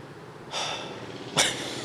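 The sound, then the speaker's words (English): A heavy, drawn-out breath hisses, followed by a sharper, sudden puff of air near the end; no one speaks. “Oh, God, that was a heavy breath.”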